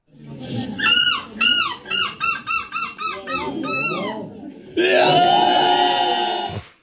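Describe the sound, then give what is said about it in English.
A person imitates a seagull's screech at a seagull-imitation competition before a panel of judges: a loud, rapid series of about eight harsh, rising-falling cries, ending in one long, sustained squawk, with murmuring background noise beneath. “saw seagull imitators showing off their best imitation screeches for a panel of judges”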